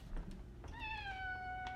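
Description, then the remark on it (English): A single drawn-out meow from April, the speaker's cat, clear and sliding slightly downward in pitch as it trails off, with a faint low background hum and no talking. “For me, that looks like spending all day chatting with my cat, April, when I'm not in Zoom meetings.”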